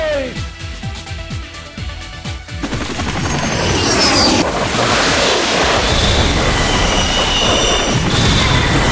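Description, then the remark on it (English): A video game helicopter fires its guns in a rapid string of sharp shots, then a loud, dense roar of engine and battle noise takes over and fills the rest of the scene. “The chopper's shooting at us.”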